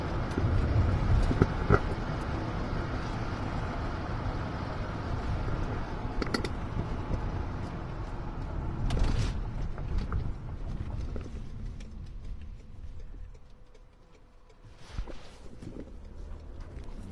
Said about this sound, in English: Very busy with a lot of traffic on the roadway. Yes. I went out a little while earlier before you came, but it was very busy.